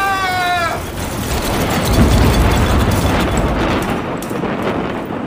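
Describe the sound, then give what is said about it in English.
A heavy, roaring crash of a tower blown over by strong wind in a storm, loud enough for everyone in town to hear, opening with a brief wavering high tone, then a broad rumbling rush that swells after two seconds and slowly fades away. “When Tower crashed to the ground, it was so loud that everyone in town heard the noise.”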